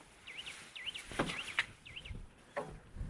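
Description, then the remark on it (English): Repeated whistling calls of wading birds on estuary marshland with big lagoons, rising and falling in quick wavering phrases over an open, breezy background with a few soft knocks and rustles. “You can hear a bit of wader action.”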